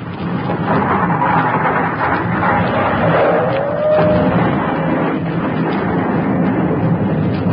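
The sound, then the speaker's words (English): The first explosion, blowing up a city and starting a new volcano, rumbles and roars loudly and steadily for several seconds, dense and booming, with a faint whistling tone gliding through the middle as rock and dirt are thrown into the air. “There. Hear that? That's the first explosion.”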